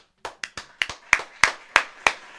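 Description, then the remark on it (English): Sharp hand claps from what sounds like one person giving a round of applause, around nine in a quick, slightly uneven rhythm, with the later claps landing louder. “I'll give y'all a fucking round of applause, man.”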